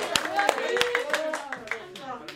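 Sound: audience applauding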